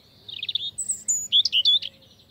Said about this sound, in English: a bird not much bigger than a chickadee, the European robin. Like the American robin, the European robin is a bird of yards and gardens and has a red-orange breast, so it's often called robin redbreast, or just robin.